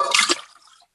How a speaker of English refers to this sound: Okay. So I put the cold in here once from this egg. This I'm going to drain it. And then I'm putting the cold ice bath water in.